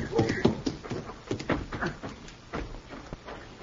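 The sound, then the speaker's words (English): Horse hooves clip-clop at a steady walking pace, a series of hollow knocks approaching as a rider arrives on horseback, with faint voices in the background. “Imagine taking a horse to come this far.”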